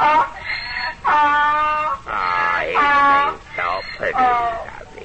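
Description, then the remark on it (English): A loud donkey bray imitated by a voice: several wavering, nasal hee-haw cries that rise and fall in quick succession over about five seconds, with no other sounds. “Till I make this donkey bray.”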